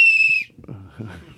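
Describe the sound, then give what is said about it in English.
A single loud, steady whistle blast holds one high note for under half a second, then cuts off as a person starts talking. “Our show's better with whistles, and everybody knows it, and they're jealous.”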